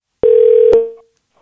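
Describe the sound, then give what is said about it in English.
A single steady electronic telephone tone sounds loud for about half a second as a call to a friend is placed, starting and ending with a click, then fades out quickly into silence with no voices. “So now it's time for a segment of the podcast called Phone a Friend, where we do just that.”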